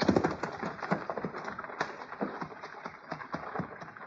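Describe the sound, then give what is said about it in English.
Horses' hooves clop and thud in an uneven walking rhythm, with scuffing and rustling between steps and no talking, as the horses are moved off a trail. “I don't know, but let's get these horses off the trail.”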